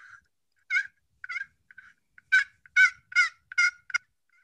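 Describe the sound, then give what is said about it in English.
A small handheld box call for turkeys imitates a gobble: a string of rapid, raspy, rattling bursts, a few sparse ones then a quicker run of loud clucks, clear with no talking. “And all you do is with this is it's a great small call because you can put it in between your legs when you're sitting there and just...”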